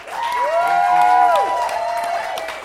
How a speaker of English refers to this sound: I want you all to give a big round of applause